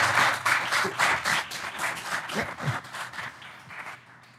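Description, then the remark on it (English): An audience breaks into a round of applause, a dense, steady patter of many hands clapping that holds for several seconds and then begins to thin and fade toward the end. “Give a round of applause, everyone.”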